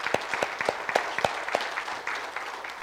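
A small crowd applauds, scattered individual claps standing out sharply over a steady patter of hand-clapping. The applause is close and moderately loud, with no one speaking.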